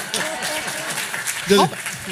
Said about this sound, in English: Hummus time, everybody. Round of applause for hummus, right?